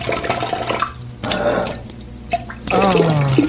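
A man urinating: a hissing, splashing stream of liquid comes in three bursts separated by brief pauses, growing louder and more gurgly toward the end, with no talking.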